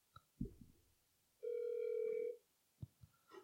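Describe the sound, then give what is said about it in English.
A single ringback tone of an outgoing phone call to the Dollar Tree Store Support Center on a Tuesday at 3 p.m., a steady electronic buzz lasting about a second, loud and clear, with a few faint thumps and clicks before and after. “Because we're calling them on podcast time.”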